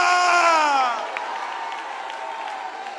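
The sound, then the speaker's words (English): A church audience shouts and cheers together in praise to the Lord, a loud burst of many raised voices that eases after a second into a steady crowd roar with a few scattered claps. “If God, oh come on, lift your voices and shout unto the Lord.”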